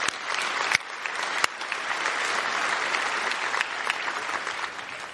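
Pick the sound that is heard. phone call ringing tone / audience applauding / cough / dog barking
audience applauding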